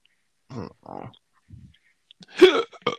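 A sharp, loud hiccup bursts out near the end, followed by a short catch of breath, after a few quieter throaty vocal noises.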